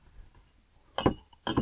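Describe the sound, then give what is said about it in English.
Two firm, grinding thumps of a muddler pressing cherries, sugar and a little splash of water against the bottom of a glass, about half a second apart, with a faint glassy clink and no talking. “We're going to muddle this up.”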